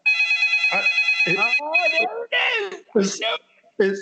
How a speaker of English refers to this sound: Let me pick this phone up.